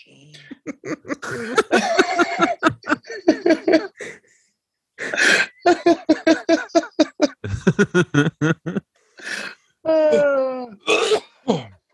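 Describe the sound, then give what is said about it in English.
A loud run of coughing and throat-clearing, with wheezy, strained vocal sounds in bursts, as a phone is spiked down. There is a short pause, then more harsh rasping coughs and rising wheezes near the end. “No, I spiked my phone and coughed.”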